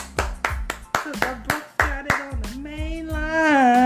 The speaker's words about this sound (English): Let's go ahead and clap.